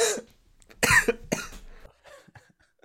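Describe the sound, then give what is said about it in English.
A few harsh coughs, brought on by laughing, burst out in quick succession, the loudest in the middle, followed by quieter raspy breaths and a fading, throaty trail. “You made me laugh enough that I actually had to mute my mic because I was coughing too much.”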